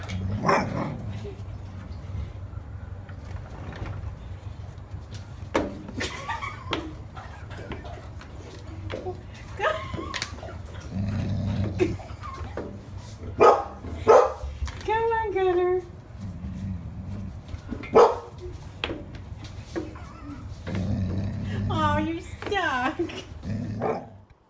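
A dog that has been called in but cannot get inside barks in scattered, sharp bursts over a low, continuous growl, with a few drawn-out whiny yelps mixed in, moderately loud throughout.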